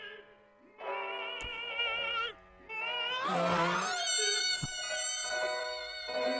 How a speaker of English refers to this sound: That is the fart, by the way. So that was the original opera fart okay. That gets him the gig. And okay. As you can hear, it was a really perfect note.